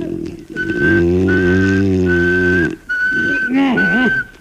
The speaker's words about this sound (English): They say if you whistle in a monotone, maybe that'll work.